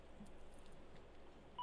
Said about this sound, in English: I hear some beeping.